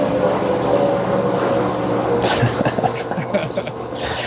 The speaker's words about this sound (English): don't know if you could hear the airplane flying overhead. Yeah, that's a fine example of our anthropocentric context.